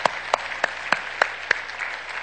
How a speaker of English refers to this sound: Let's give the Lord a clap offering of praise. 하나님께 영광 박수 올리겠습니다.